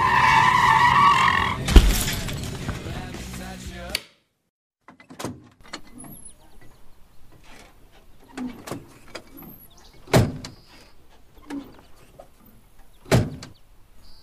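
A truck's tires screech loudly in a sustained skid, broken by a sharp crash as the truck hits a buck with about 12 antler points. The sound cuts off abruptly, then scattered knocks and clatters follow at intervals in near silence.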